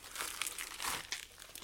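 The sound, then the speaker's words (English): Inside Out Christmas wrapping paper crinkles and rustles continuously as it is pulled open from a gift of smoked and dried pork and elk sausage, with bright, crisp crackling bursts of varying loudness and no voices. “I should note this is in Inside Out Christmas wrapping paper, by the way.”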